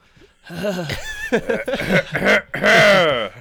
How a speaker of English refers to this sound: Excuse me, just let me clear my throat directly into the microphone.